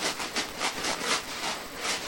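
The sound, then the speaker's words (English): A shoebox is rocked back and forth so its contents slide with a rapid, rhythmic swishing hiss, about seven strokes in quick succession, used as a sound effect in a little play to imitate the water of crashing waves. No one speaks. “Like, we're using the shoebox for, like, the water when it's crashing on the waves.”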